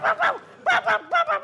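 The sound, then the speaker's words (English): A dog barks in two quick bursts of short, yappy barks, three in each, loud, with a brief pause between the groups. “What a naughty dog.”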